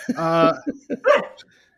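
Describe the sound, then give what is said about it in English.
A dog gives a drawn-out, whiny bark, followed by a few short yips and another sharp bark, then quiet. “I don't know what you want, dog.”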